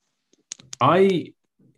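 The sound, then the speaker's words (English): A few sharp clicks and taps of a microphone knocking against a clothing zip come in a quick irregular cluster, followed by a brief voiced sound. “I wonder if your microphone might just be tapping on your zip there.”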